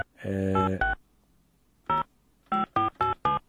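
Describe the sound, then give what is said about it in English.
A phone dials out on the radio station Radio Veritas: a sustained tone, then a series of short, loud keypad beeps, a lone one after a pause and a quick run of four near the end, with no talking. “we're going to quickly try her and see if she's going to pick up her phone because it's another belated one.”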